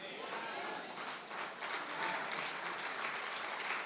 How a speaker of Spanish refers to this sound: ¡A ver ese aplauso!